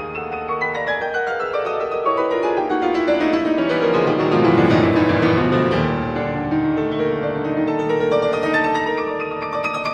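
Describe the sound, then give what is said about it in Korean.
Rich piano music with full chords across a wide range, swelling in intensity toward the middle as it builds to a climax. No voices are heard. “클라이막스로 다가가면서 점점 강렬해지고 있어요.”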